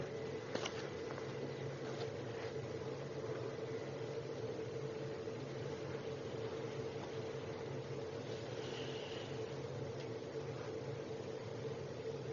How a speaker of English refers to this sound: would it help to shut that door in terms of the sound of the furnace? Or does it need to be open? It's blocked open, so I think it needs. Oh, maybe it needs the input of air.